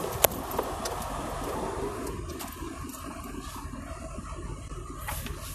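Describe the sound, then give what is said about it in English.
A truck engine idles nearby after just being started, a steady low rumble with a faint rhythmic chug that runs unbroken through the whole stretch, with a couple of small clicks near the start and no voices. “There's a truck over here by us that's just cranked up, I guess, so that they could run their AC.”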